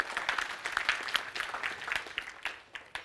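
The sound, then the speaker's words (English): A crowd at Rock City church applauds a worship leader for nearly 7 years of leading worship there. Many overlapping hand claps form a dense, crackling wash of sound at a moderate level, with no talking over it. “Let's give him a hand clap for that, 7 years.”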